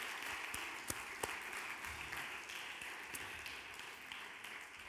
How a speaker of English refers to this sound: let's just give our kids a big round of applause. They're just fantastic.